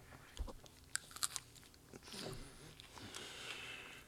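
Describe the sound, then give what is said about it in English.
A person bites into a hot, spicy, grassy-tasting food: a cluster of sharp crackling bites early on followed by softer, grinding chewing noises, with faint breathing or sniffing. “I'm taking a bite out of it. It's very crunchy.”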